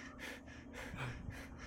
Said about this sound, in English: Breathing like a locomotive engine.